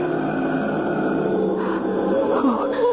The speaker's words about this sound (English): First I could hear his breathing.